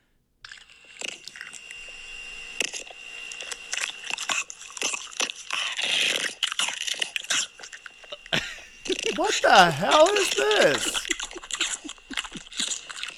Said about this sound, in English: What is that, a dog eating? Yeah, so it's a French bulldog eating crunchy foods. And it is so good.